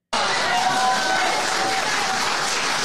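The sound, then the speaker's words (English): A crowd applauds steadily, a dense wash of clapping that holds at a constant loudness from start to finish, with a few faint whistle-like tones threading through. “That was applause, applause, applause.”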